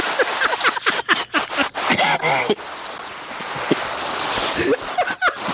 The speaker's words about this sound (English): Just randomly starts raining.